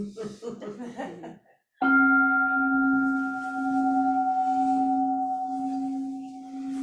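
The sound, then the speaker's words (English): A voice speaks briefly, then a single meditation bell is struck, its deep steady tone and bright overtones ringing on and sustaining loudly with a slow, gentle fade. “And could I get a bell?”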